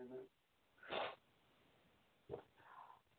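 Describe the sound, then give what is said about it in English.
Two short, breathy honks of someone blowing their nose, with a brief muffled sound at the very start and a faint rustle after the second blow. “But anyway, I'm gonna blow my nose, wipe the tears, and move forward.”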